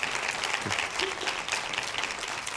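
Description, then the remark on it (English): An audience claps together to give God a hand clap during a morning church sermon, in a steady, dense wash of hand clapping that holds at an even level throughout, with a faint voice briefly surfacing beneath it. “Somebody give God a hand clap this morning.”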